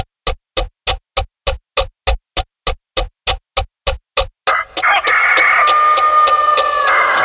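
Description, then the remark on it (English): A steady run of sharp ticks from a clock gives way to a loud, drawn-out crow from Vindaloo the Rooster of Australia, lasting a few seconds. No one speaks. “That rooster crow is courtesy of Vindaloo the Rooster out of Australia.”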